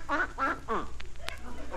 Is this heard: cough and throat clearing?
no